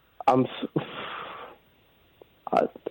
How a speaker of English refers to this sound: I don't feel like I've been rude, but if that's how you feel, you've been sniffing. You've been sniffing constantly. That's rude. Yeah, that's ill-mannered.